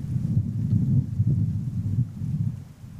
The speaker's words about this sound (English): If you listen closely enough, you can hear the wind rustling the brush that's around me.